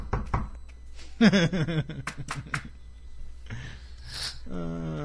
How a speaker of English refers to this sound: Knock on wood.